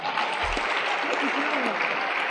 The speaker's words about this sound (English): Clap for him.